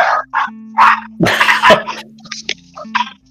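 angry dog barking

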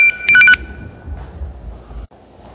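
phone ringing

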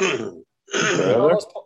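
coughing

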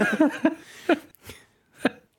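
sneeze

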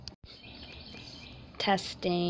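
bird song

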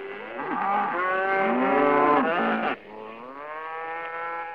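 cows mooing

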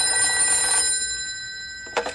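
telephone ringing

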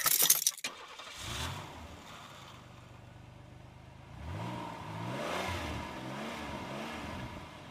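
getting into car

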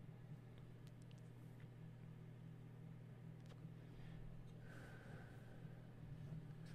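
car interior road rumble

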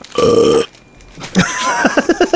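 burp

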